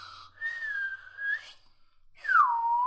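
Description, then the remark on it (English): A person whistles in imitation of a slide whistle: a steady held tone that bends up at the end, a short pause, then a loud note gliding downward. No talking. “Was that supposed to be like a slide whistle?”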